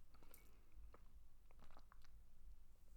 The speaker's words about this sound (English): Just take a sip of my coffee.